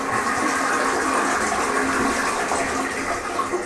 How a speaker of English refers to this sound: Well, at least it wasn't right after the toilet flushing.